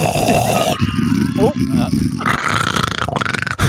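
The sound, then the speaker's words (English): A voice imitates snoring, mimicking a sleeping senator, with rough, rumbling low-pitched grunts and throaty rasps, fairly loud and continuous for a few seconds, without any clear words. “Quick, while the senator is asleep, slip in the office.”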